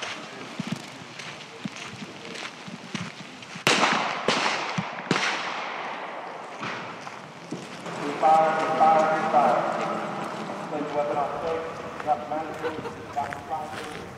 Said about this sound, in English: Just to warn you, you're going to hear some gunshots. Five charges. At this time, secure that 7-round magazine and lock and load. Engage your target.